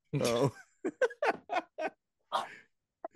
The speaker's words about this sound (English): You hear her though, right? It's not. I heard the second bark, yeah. She's like a little bull and she like scrapes her foot. She's mad at me.